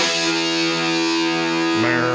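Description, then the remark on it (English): A heavily distorted electric guitar, an SG played through a fuzz pedal, holds one fuzzy, buzzing note for about two seconds, then shifts pitch near the end. The tone stays loud, thick and saturated, with no voices. “Hear that sustain? I do hear the sustain. Sure, part of that is a fuzz pedal, but I think the mahogany wood gives you more sustain.”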